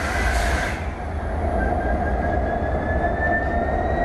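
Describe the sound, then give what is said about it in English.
A train starting up: a loud, steady low rumble with a thin whine that slowly rises in pitch as the engine gets going. No one speaks. “climb aboard with me. Let me just fire it up here.”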